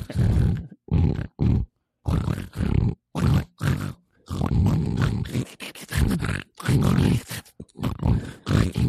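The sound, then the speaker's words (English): A person imitates pig grunts in a rapid series of loud, rough, snorting bursts with short gaps between them, the grunts varying in length and sometimes running together into longer growls. “This okay is a legitimate impression of pigs actually hosting the podcast, just for 30 seconds.”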